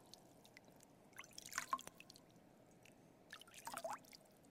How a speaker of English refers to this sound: God, I pray that even in this moment, we would listen to the sound of the water.